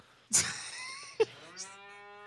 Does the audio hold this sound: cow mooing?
yes